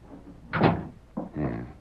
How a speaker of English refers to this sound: Shut the door.